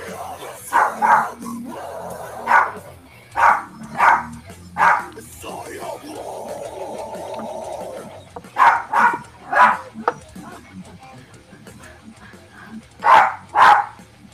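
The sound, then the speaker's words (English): A small dog barks and yips in sharp, high bursts, about a dozen in quick clusters of two or three, loud, with quieter murmuring stretches in between. “your dog's doing backup vocal.”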